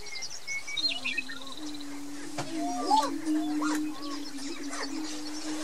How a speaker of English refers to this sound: This is what the greater prairie chicken sounds like.